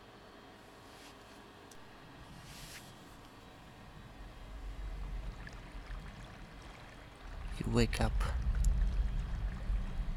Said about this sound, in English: and you're on the side of a creek.